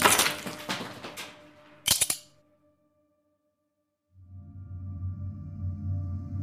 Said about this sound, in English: picks up the nutcracker, and cracks the last ice cube.